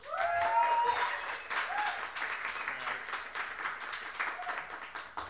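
An audience applauds steadily for several seconds, a dense wash of many hands clapping that swells at first and then holds, with a few cheers and voices rising above it.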